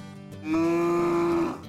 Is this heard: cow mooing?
yes